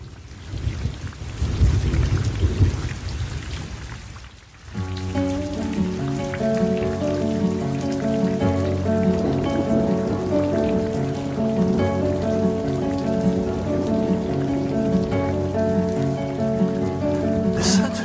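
Heavy rain pours steadily with a deep rumble of thunder near the start, then melodic instrumental music comes in over the continuing downpour.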